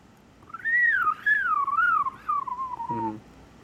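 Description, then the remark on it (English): A person whistles through saliva in imitation of a veery thrush's song: one fairly loud, warbling tone that spirals steadily downward for nearly three seconds, then ends in a short buzzy flutter. “I'm just basically making my whistle go through saliva.”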